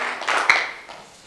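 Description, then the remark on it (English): An audience clapping their hands together, a brief, dense wash of many overlapping claps that swells quickly and then fades away, with no voices heard. “Clap your hands together and you may be seated.”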